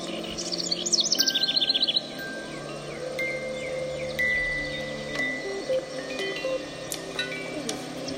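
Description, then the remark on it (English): Bright bird chirps, part of a video game's sound effects, trill rapidly in a quick burst at the start, then scattered tweets continue over a steady, layered musical backdrop. No one speaks. “I think just the sound effects, like the birds chirping and stuff, are so nice.”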